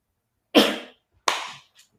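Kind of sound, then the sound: human body sound, sneeze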